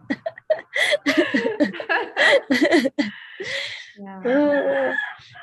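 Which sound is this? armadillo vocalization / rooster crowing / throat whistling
rooster crowing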